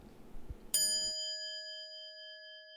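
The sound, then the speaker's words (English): A single bright bell ding from a bell on a desk strikes sharply and rings out with a clear, sustained metallic tone that slowly fades, following a moment of faint low rustling. “Ding dong. My bell is all the way over on my desk and I'm recording this episode from the bed.”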